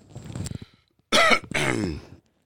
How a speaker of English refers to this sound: Excuse my voice. I don't know why my throat's super dry today, and I've been coughing.